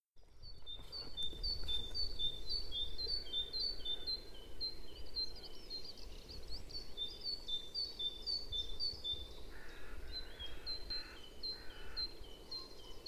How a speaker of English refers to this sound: So this one is the Great Tits. So the song of this is just this two-syllabic song that I think sounds a bit like teacher, teacher, teacher. And it just repeats these two notes really consistently and just has that repetitive song structure.